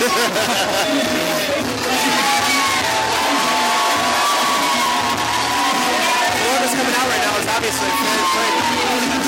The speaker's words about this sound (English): This spot was a singles matchup scheduled for one fall. I love that the crowd always yells one fall with the ref. That is pretty cool.